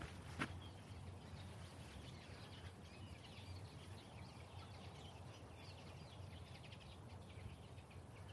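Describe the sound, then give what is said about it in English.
Faint chattering of linnets and goldfinches, a continuous twittering flock up in the trees on the way to the Ladle Hill hill fort, half-buried under steady low outdoor rumble with one brief knock near the start. “You might be able to just make out the crowd of linnets, and some goldfinches chatting away up in the trees here.”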